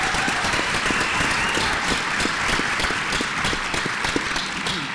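An audience applauds a panelist being introduced, steadily for the full five seconds, a dense, even wash of many hands clapping at a fairly loud level, with no voices on top.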